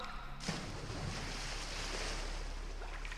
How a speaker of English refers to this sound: Nice simple splash.